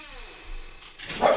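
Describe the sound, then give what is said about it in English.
A dog gives a short bark or yip near the end, in the background, following a stretch of quiet background noise. “It sounds like the dog is making a suggestion in the background.”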